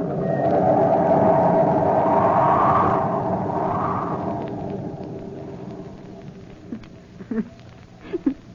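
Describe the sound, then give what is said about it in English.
Storm wind howls and whistles through ship sails, a loud, shifting roar with rising and falling tones that gradually eases, followed by a few sharp creaks or flaps near the end. “The wind was screaming through the sails like an insane witch on a broomstick, but Weston and I climbed to the cross trees of the mainmast.”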